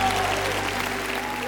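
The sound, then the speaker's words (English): An audience at a church service claps together for the Lord in a steady, dense burst of applause, loud and sustained, with a faint low hum beneath and some murmuring voices. “Come on, let's give the Lord a more good hand clap.”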